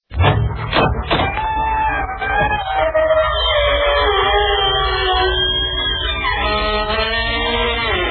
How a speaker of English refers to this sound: This is your host to welcome you through the creaking door into the inner sanctum. Come on in.